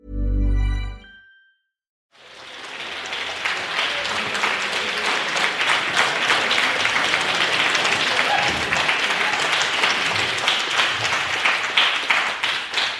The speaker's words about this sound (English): Big fan of the lukewarm applause. Yes. As I casually sort of nod, everyone's like, oh, yeah. Yeah, he's okay. That's kind of cool he's here, sure.